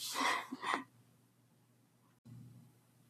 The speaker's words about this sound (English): Sorry, I just had to pause to sneeze there. Sorry about that.